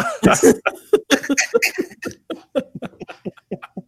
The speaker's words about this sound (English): Make the cough noise.